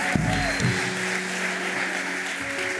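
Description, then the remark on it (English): A church audience applauds steadily for about three seconds, a dense wash of many hands clapping, with sustained low keyboard or organ tones held underneath. “Come on, church, let's give them a big round of applause.”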